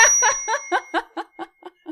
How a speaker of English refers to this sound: That's the first chime.